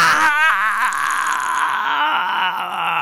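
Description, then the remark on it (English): A voice lets out a loud, sustained, high-pitched scream imitating a woman screaming. The cry wavers and trembles in pitch for about three seconds without a break, piercing. “It's pretty funny that she end quoted in the scream, then screamed more so that you could really end quote it.”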